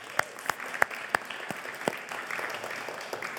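An audience applauds, opening with several sharp, distinct claps that quickly merge into a steady, moderately loud patter of clapping lasting a few seconds.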